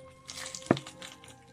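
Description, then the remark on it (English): A single sharp, loud crunch as someone bites into crispy meat spring rolls with rice noodles and carrot, surrounded by fainter crackly chewing noises, with no talking. “Should we do a crunch together?”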